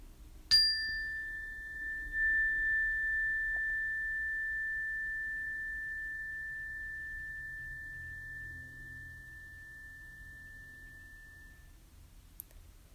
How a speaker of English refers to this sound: I invite you to bring your attention to the sound of the bell for the next moment, allowing your attention to feel the warm vibrations.